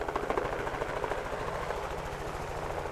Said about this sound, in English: A helicopter flies above the snowy open hills in the Grosvenor Wilderness in Teton County. Researchers like Allison Cordemanch are capturing bighorn sheep.